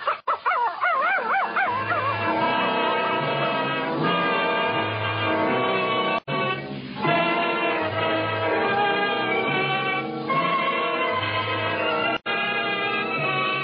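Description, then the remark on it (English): A dog whimpers with rising and falling whines, then keeps up a steady run of yipping barks and whining that continues without pause for more than ten seconds. “Listen to him. This is the first time he's ever wanted to go for a walk with me.”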